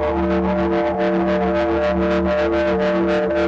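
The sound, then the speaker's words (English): A sustained synthesizer tone with rich harmonics, passed through filters with sample rate and bit depth reduction, pulses steadily in volume, a rapid rhythmic wobble from a tremolo effect with LFO wave shapes, loud with no voices. “That goes into a tremolo, basically. It's like a CA with all the different LFO wave shapes, so it'll be something like this.”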